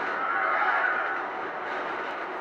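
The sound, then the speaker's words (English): A steady, continuous rumbling roar of a train rolling along the tracks in a movie scene of fighting on top of the train, loud, holding an even level throughout with no voices. “Fucking fighting on top of the train.”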